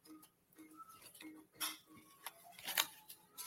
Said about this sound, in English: I'm just shuffling the cards here.